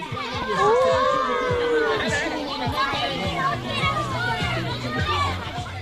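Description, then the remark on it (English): Children play noisily before class, practicing hitting the target of a dunking machine, their overlapping high voices chattering and calling out in a steady, busy babble, with occasional dull knocks and thumps mixed in. “For now, the children are using the time before class to practice their skills at hitting the dunking machine target, getting ready for the day they finally get to dunk a teacher.”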